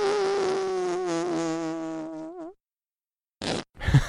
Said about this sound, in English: Go buy a whoopie cushion.